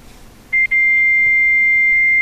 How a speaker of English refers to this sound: Oh, they decided to hook it up to a fax machine so that you couldn't talk to them.